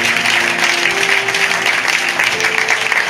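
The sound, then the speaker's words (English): An audience at a Sunday baptism service claps steadily for about three seconds for those deciding to be baptized, a loud, dense wash of many hands with no pauses, while a faint sustained tone hums softly underneath. “Yeah, clap for that. That's something to clap for.”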